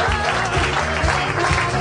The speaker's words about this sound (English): Nobody go anywhere. Keep clapping. It's fun.